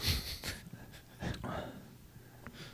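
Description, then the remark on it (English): A female dog snorts and breathes heavily, with several short, rough bursts of air spaced unevenly over a few seconds, fairly quiet overall. “Dog named Everest just butted herself into the show.”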